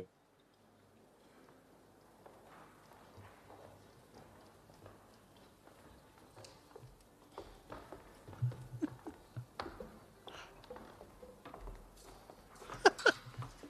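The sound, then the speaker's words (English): Footsteps of a drummer tap steadily on a hard surface, faint at first and growing louder as if approaching, with a few sharper steps near the end over a quiet, hollow background. “You can hear his footsteps.”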